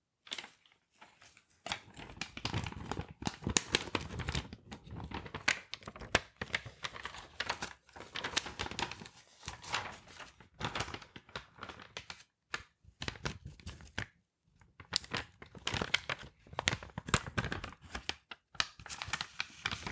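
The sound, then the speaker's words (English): Loud crinkling and rustling of plastic wrapping paper in irregular bursts, with brief pauses between handfuls, as sheets are handled and folded as the base for wrapping a bouquet of flowers. “So the first thing I'll use is some lovely plastic crinkly wrapping paper as my base.”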